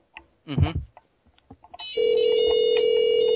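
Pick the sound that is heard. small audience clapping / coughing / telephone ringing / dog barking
telephone ringing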